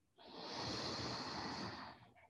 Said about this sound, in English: Breathing in. And here we chant E.